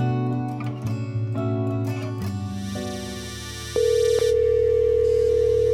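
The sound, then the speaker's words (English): A telephone rings with a short melodic sequence of stepped electronic tones, then a single loud, steady beep, the voice message tone, holds to the end. The call goes unanswered and is forwarded to an automatic voice message system; no voices are heard. “Your call has been forwarded to an automatic voice message system.”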